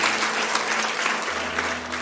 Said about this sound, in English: Yeah, go ahead and give the Lord a clap offering. Amen. Amen.